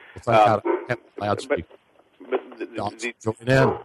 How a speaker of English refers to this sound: I mean, we are, hey, apologize for that. I've got my guard dog barking.